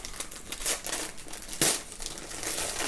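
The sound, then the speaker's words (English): Wrapping paper on a present crinkles and tears in a steady, scratchy rustle as the gift is opened, with a couple of sharper ripping bursts standing out. No voices, just the paper being pulled apart. “I just don't want to open it.”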